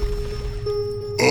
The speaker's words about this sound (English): Leo, I think that beeping is coming from your bag!